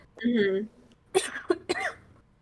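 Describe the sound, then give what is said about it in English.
A brief voiced murmur, then three harsh coughs in quick succession from a person still recovering from two days of being sick, each a sharp burst that trails off, the last two bunched tightly together. “Sorry, I'm still recovering from being sick the last 2 days, so sorry for coughing so much.”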